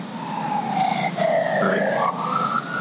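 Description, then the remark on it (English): Emergency vehicle sirens wail through downtown Los Angeles, their pitch gliding up and down steadily over constant traffic rumble, fairly loud. “I can hear the sirens. You must be in downtown Los Angeles.”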